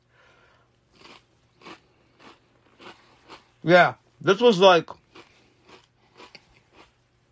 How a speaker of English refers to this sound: And I wanted to eat some Triscuits. Without, like, crunching in the